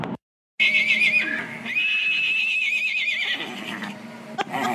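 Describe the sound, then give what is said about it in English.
A miniature horse named Liam whinnies loudly, a long shrill neigh with a wavering pitch that breaks briefly and then continues, followed by lower snorting and breathy calls. “And here is a recording of my mini Liam giving Chili a run for his money.”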